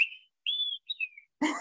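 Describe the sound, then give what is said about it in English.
A person whistles an imitation of an olive-sided flycatcher's song, which says "drink 3 beer": three clear, high notes, the last sliding downward, then cut off by a sudden noisy burst. “Or the olive-sided flycatcher is a favorite of mine. It'll say, drink 3 beer.”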